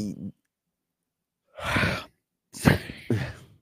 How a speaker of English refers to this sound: That was a really big yawn. I didn't notice you yawning when the other female was talking.